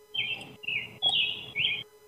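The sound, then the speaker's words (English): Birds chirping outdoors in four quick, high-pitched bursts over about two seconds, clear, with a faint low background murmur underneath. “Are you somewhere tropical? I hear birds chirping in that.”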